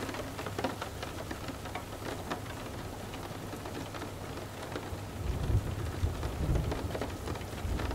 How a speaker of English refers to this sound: With a twinkle of wind chimes from a passing subtle breeze, from a sprinkle of gently tapping raindrops on your slightly open window, to a gentle, distant roll of thunder.